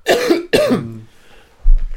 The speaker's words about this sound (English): This cough is annoying.